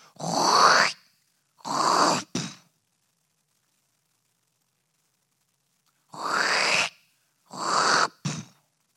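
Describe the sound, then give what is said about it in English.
The glass-lined door of a room creaks open as people check whether someone inside is still breathing. Each pull makes a rising, groaning squeal in two quick strains, then a long silence before the same two-part creak repeats. No one speaks. “Eventually, I came up enough that I realized it was the glass-lined door in my room and that they were checking on me to see if I was still breathing.”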